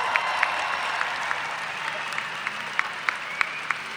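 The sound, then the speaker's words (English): A crowd applauds steadily for about four seconds in another cheer for a group of women, a dense wash of clapping with a few sharper claps standing out at a loose, regular beat. No voices stand out above it. “So these powerful women, give them another cheer.”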